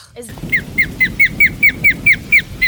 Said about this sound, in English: Everyone thinks it sounds like a red-tailed hawk. Oh, I know, because of the movies. Yeah. Yeah. Yeah. Can we dub in the sound of an osprey? Is that possible? It is possible.